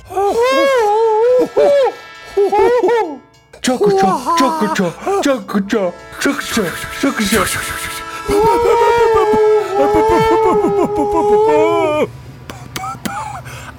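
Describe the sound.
Two voices imitate a train whistle together, producing long wavering hoots with sliding pitch, broken into several loud bursts and sustained tones, ending with a few shorter calls.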